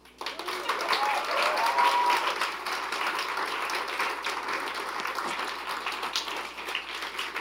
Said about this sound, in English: Come on, let's give another just round of applause.